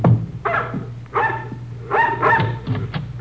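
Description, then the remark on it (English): A mongrel dog barks at people's heels as they go up a rickety porch. It gives about five or six short, sharp barks in a loose, agitated rhythm over a low steady hum. “They stared at us while we went up the rickety porch, the dog barking at our heels.”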